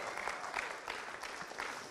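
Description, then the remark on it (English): A church audience at a sermon claps for God, a dense wash of many hands clapping at an even, sustained level for the whole stretch, with no voices standing out. “Yeah, give God a big clap, because he's the gardener and he's going to pull out some roots today, but clap for him.”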